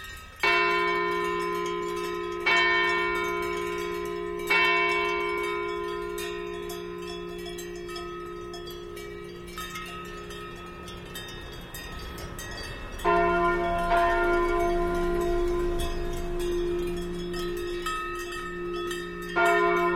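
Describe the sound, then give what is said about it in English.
A nearby church bell tolls the Angelus in slow, resonant strokes that ring out and decay, while the bells of a herd of cows heading back to the barn clank irregularly underneath throughout, in a Swiss alpine village, with no voices present. “In a Swiss alpine village, Stephen Feld recorded a herd of belled cows heading back to the barn as the Angelus chimes from a nearby church.”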